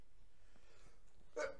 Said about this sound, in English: You just dabbed on video. You are disgusting. I take back the bless you. You are disgusting with the sneeze and the dab.